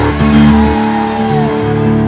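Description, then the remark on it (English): An audience shouts a drawn-out, loud "amen" together after a blessing given in the name of Jesus, many voices blending into one sustained cry over steady, held keyboard chords for about two seconds. “And everybody shouted, amen.”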